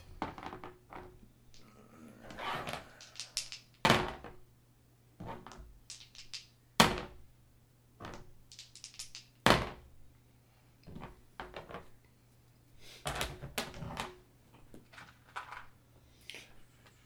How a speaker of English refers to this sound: Grabbing extra dice, folks.